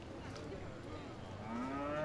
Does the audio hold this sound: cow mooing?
yes